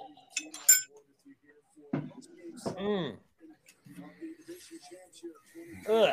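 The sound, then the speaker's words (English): Glasses of water and whiskey, including Coffee Patron, clink together in a toast, a quick bright cluster of taps near the start and a few more later, with people chatting and calling out around them. “You guys want to cheers? Water and whiskey? Cheers.”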